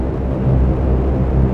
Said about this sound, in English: Sorry, there's some planes overhead. Some big ones.